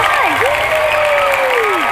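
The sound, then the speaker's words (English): Dense, steady applause from a crowd fills the whole two seconds, loud and continuous, with a high gliding whoop of cheering that rises, dips and trails off over the clapping. “I can hear clapping.”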